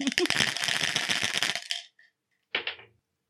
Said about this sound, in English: we have a 20-sided Dungeons & Dragons dice. Nice. And I will roll it, and whatever number it lands on, you have to describe yourself in that many words.